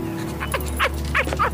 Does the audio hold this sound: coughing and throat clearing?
no